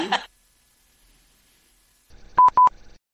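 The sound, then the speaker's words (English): Two quick, bright electronic beeps from a mobile phone ringtone sound in near silence, preceded by a short burst of a voice at the start. “Yeah, that's my ringtone.”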